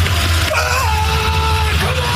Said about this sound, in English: We'll start with shot put. Ryan Krauser, he won the gold. And listen to him scream as he's letting the shot put fly across the field.